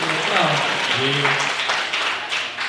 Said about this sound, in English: And welcome to Plumbing the Death Star Get Posh, live in Manchester, night 2. They clapped me.